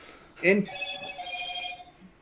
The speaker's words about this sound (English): Someone's phone's ringing.